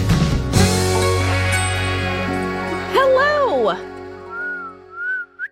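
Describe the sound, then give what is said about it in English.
A weak, breathy human whistle wavers and slides up and down in pitch over a background of music, ending in a few thin, sustained notes. “I have the most pitiful whistle.”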